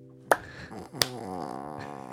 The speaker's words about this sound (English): Ready? We're going to clap it. Ready? Three, two, one.